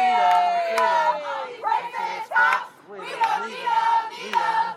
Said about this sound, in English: The crowd is mostly standing and there's a lot of dancing going on. These rhythmic chants. It's the young people on the march.